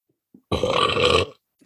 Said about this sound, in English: Is that the donut and the coffee burps? I mean, I burp pretty much regardless of what's going on.